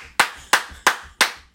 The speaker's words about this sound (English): Let's do a clap off. Let's have a quick clap off. You go first. What's your churchiest clap?